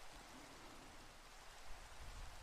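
Steady rain falls in a dense, even hiss, with a faint low rumble underneath and no voices.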